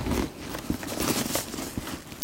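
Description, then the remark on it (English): The zipper of a bag's middle zip pocket being pulled open, a continuous scratchy rasp with a few small clicks and ticks, lasting a couple of seconds with no one talking. “There is a middle, there's a middle zip pocket right here. So I'm gonna open that one up.”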